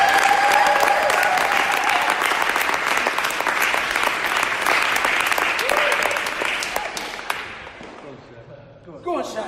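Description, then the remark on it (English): Loud, dense applause and cheering from a crowd welcoming speakers at REG, with steady clapping and some cheering that holds for several seconds before thinning out and fading near the end. “Let's give them a big cheer.”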